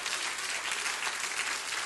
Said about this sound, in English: Praise him. Give him a hallelujah today. Give him a hand clap.